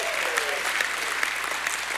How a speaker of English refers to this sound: You ought to give him a hand clap and a shout of praise.